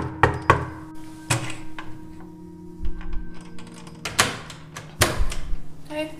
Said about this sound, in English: I went back to the building to see what I could find, and I went to my old apartment and knocked on the door.